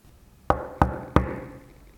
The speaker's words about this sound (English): Big Bad Wolf goes straight to the cottage and knocks at the door.